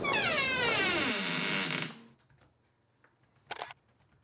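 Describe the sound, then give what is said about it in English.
At a train museum, a door creaks open as people head outside to the museum campus, with a loud, drawn-out squeal that slides downward in pitch for about two seconds, followed by near silence and then a short, sharp latch-like clack. “So, let's open the door.”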